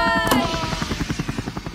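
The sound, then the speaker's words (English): A helicopter flying away, its rotor chopping in a steady, rapid thumping rhythm, with a brief sharp burst near the start and a faint whine fading out early on. “I'm going to shoot a flare into the sky and then ride away on the rope ladder of a helicopter.”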